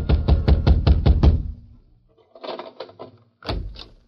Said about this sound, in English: A few minutes later, Grabber Garson was wakened by a pounding on his door.